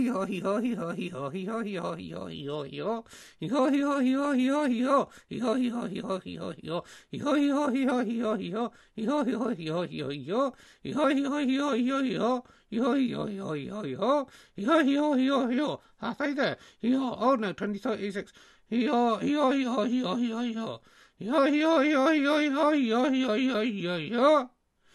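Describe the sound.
A person imitates a donkey as a birthday treat, braying hee-haw after hee-haw, a requested run of 88 hee-haws, in a long, loud, steady run of rising and falling voiced calls with only brief pauses between bursts.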